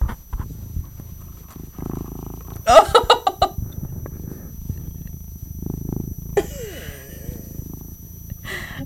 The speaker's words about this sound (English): There you go for you listeners. If you're feeling down, some kitty purrs.